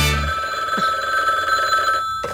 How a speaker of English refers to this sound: Hi, who's on the phone? Answer the phone!